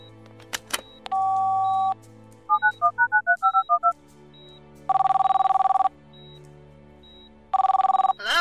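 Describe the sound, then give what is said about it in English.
A phone handset clicks, a dial tone hums, and a quick run of keypad beeps follows, then two steady, buzzing ringback tones about a second long each, spaced apart. No one speaks. “I've got to make a phone call.”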